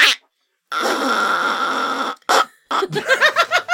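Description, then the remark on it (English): A duck call blown to sound like a fart: a long, buzzy blat, then a couple of short blasts and a quick run of quacking honks, loud, with no voices. “Well, you also don't have, did you actually have your mouthpiece, though, for the duck fart?”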